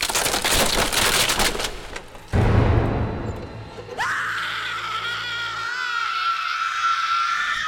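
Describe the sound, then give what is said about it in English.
A loud clatter and heavy crash from the floor above give way to two shrill, piercing screams in different pitches, overlapping and held for several seconds, intense. “Two loud, piercing screams, different timbres. That then stop.”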